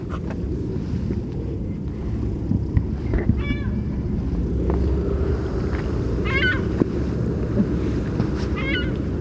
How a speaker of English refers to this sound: A good California gull. The Utah state bird.